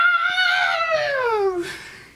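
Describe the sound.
A single loud, high-pitched, piercing scream slides steadily downward in pitch over about a second and a half before breaking into a short, breathy rasp.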